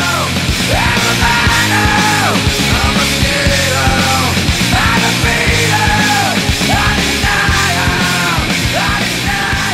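Loud, distorted grunge rock with pounding drums and heavy guitars, a raw voice screaming the same phrase again and again over the dense wall of sound.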